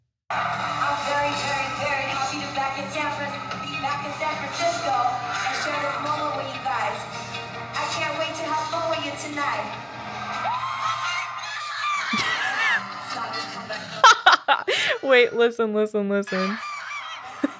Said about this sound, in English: I have videos where you can literally hear me screaming in the background, dying.